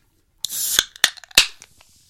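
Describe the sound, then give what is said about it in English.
A fizzy drink is opened: a sharp hiss of escaping gas, then several crisp snapping clicks and a fading bubbly fizz trailing off, with no voices. “Oh, and there's the fizz even.”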